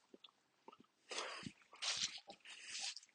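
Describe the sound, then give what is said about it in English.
Chewing: soft clicks and smacks, then three longer wet, crunchy bursts in an irregular rhythm, fairly loud and with no talking. “Hope the chewing isn't putting you off.”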